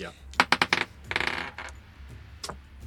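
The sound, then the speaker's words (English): A d20 die clatters across a hard table and lands on 12, with a quick series of sharp clicks followed by a longer rattling tumble and a few scattered taps as it settles. “That's a 12? 12 hits. Oh, nice. Still, though, you might need to put that little d20 in dice prison.”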